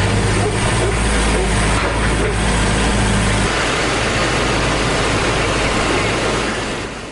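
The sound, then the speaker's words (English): Loud, steady roar of rushing floodwater filling the whole clip, in a flood in Buchanan County, western Virginia, after six inches of rain fell in just hours, with a low engine drone underneath for the first few seconds before it cuts out, leaving only the churning water. “This is some sounds of what it's like to be in the middle of a flood.”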